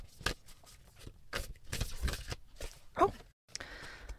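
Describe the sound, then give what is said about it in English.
A deck of Rebecca Campbell Work Your Light Oracle cards being shuffled, with a string of quick, irregular papery flicks and slaps over about four seconds, followed by a brief pause and a softer rustle. “I'm going to take a minute and shuffle with the intention that I'm going to pull a card that the audience needs to hear right now.”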